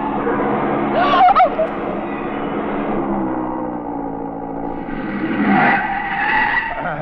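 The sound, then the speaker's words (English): A Porsche's tires screech in a long skid on a road. A shrill squeal rises sharply near the start and again toward the end over a steady rumbling engine, loud throughout. “That Porsche ahead, he sees my lights. No, mon pauvre, no, not so fast.”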